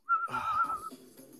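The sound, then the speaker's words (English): A dog lets out one drawn-out, high-pitched whine lasting about a second, wavering slightly in pitch before breaking off into faint low background noise. “The dog's going to be whistling in the background.”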